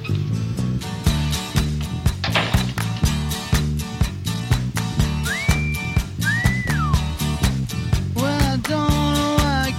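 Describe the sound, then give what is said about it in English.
Someone whistles a few sliding notes over a steady, beat-heavy music track, with more whistled tones rising and falling near the end. The whistling is clear but sits within the music. “You know how to whistle, don't you, Steve?”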